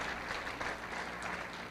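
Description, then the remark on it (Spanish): A church audience gives a big round of applause to the King (Jesus), a dense, continuous wash of many hands applauding at an even loudness with no voices rising above it. “Le damos un gran aplauso al Rey.”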